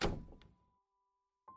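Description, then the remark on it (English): A heavy door is slowly closed, shutting with a solid, low thunk, its boom fading over a moment of quiet before a second, softer knock sounds near the end. “She slowly started closing the door, muttering that I needed to come back later and that she would explain everything then.”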